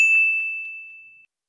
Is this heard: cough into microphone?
no